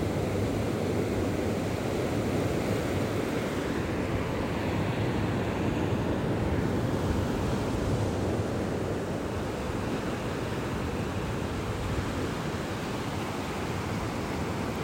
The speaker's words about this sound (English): Visualize the waves, soft curling, playful and foamy.